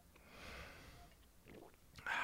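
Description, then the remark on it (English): Someone swallows a drink of white wine mixed with root beer in a few quiet gulps between soft, breathy exhales, ending with a sudden louder hiss of breath. No one speaks. “Sorry for the swallowing sense.”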